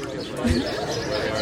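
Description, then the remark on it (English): Birds call and chirp busily just after rain has cleared, fairly soft and continuous, with a low murmur of voices underneath throughout. “Birds are just going crazy. Oh, maybe because the rain just cleared up.”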